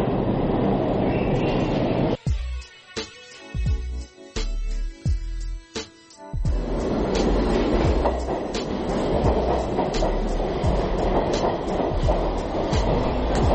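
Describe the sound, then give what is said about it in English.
A loud subway train roars past, its steady rumble broken midway by a run of sharp, rhythmic wheel clacks before the heavy roar surges back. No one speaks. “Like the subway train was gonna hit her.”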